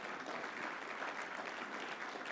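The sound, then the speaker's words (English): A brief, thin round of audience applause, scattered hand claps blending into a steady patter for a couple of seconds, fairly soft and with no voices. “See, that clap was so puny, I can tell you've lost a little bit already.”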